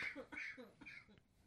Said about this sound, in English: Oh, there she goes with the coughing.